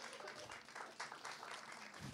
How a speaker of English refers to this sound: If you just want to give Phil a round of applause, everyone.